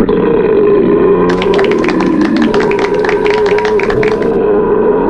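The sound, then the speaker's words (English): A long, loud belch held for several seconds, its throaty drone turning crackly and rattling through the middle before easing off. No one speaks. “We'll be discussing and rating these beers with these Suds ratings plus our signature belching sounds.”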